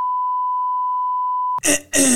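A steady, loud pure-tone bleep, the classic censor beep covering a bad word, holds for about a second and a half, then cuts off into a couple of short, rough vocal bursts like a throat sound or groan.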